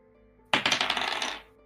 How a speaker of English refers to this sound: I dropped my dice.